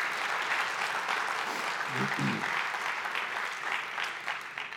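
A crowd on a campus applauds steadily in appreciation of a pastor, the dense clapping holding at an even, loud level throughout with a brief low murmur of voices partway through before it begins to taper off at the end.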